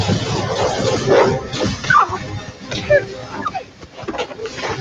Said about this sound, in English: Yeah. They're punching them and it's just sad puppy noises. It was very upsetting. I didn't like it. I did not care for that at all.